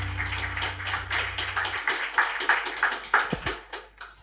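Audience applause: a steady patter of many hands clapping for about four seconds, dense and crisp, with a low hum underneath at the start that then drops away.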